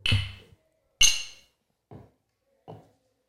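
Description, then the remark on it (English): Glasses clink together in a toast: two bright, ringing taps about a second apart, followed by two duller, softer knocks, with no talking over them. “We just want to say cheers.”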